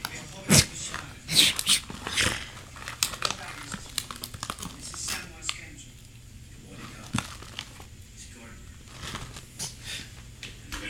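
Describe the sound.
A few sharp dog barks in the first couple of seconds, followed by softer whimpering yelps, with crinkling noises and voices in the background.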